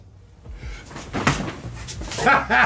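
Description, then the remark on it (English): A dog gives a couple of sharp barks near the end, following some shuffling and knocking noises, with a faint voice in the background. “Dog. I'm sorry. This is so annoying.”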